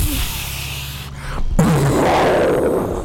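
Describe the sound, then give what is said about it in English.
A voice imitates an explosion: a breathy hiss, a brief pause, then a loud rushing burst with a low grunting tone that trails off into a long noisy rumble. “You make good explosions.”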